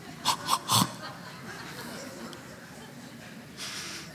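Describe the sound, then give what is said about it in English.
A voice imitates yawning three times in quick succession, each a short breathy vocal burst, followed by quiet hiss and a faint exhale near the end. “Someone yawns. And without even trying, you yawn. Lori always goes, three times.”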